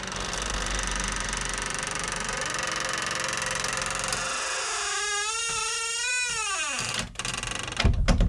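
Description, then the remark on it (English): A door creaks shut with a long, wavering groan over steady background hiss, followed by a sharp click and a louder clunk as the latch catches. “Like a nice, creaky haunted house shut. A creaky, and then you hear the latch go.”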